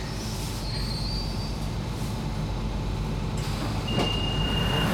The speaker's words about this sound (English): What can you hear? Oh, yes, I can hear the trains that are going quite close by.